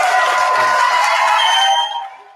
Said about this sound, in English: What we're gonna do, we're gonna clap it up one time for those beats. One time. We can clap it up.